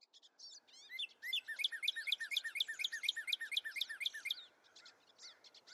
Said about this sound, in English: It is more than very quiet. It is suffocatingly so. And instead of that expected sound blanket of engines and machinery, there comes birdsong.